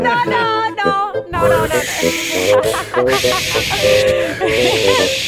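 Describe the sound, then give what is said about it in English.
Breathy, hissing puffs of air as someone blows up an inflatable neck pillow, heard under overlapping voices and laughter that carry on throughout. “I've got this inflatable neck thing. You blow it up.”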